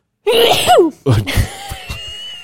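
A single close, loud sneeze: a drawn-out, rising voiced intake that breaks into a sharp, noisy burst, then a few faint breathy sounds trailing off.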